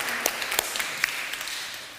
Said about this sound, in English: Round of applause, very good.